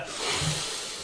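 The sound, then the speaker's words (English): A single long, deep sniff of a sugary-smelling, vanilla-flavoured product, a steady breathy hiss of air drawn in through the nose for about a second, with no talking. “Just let me get a good whiff of these.”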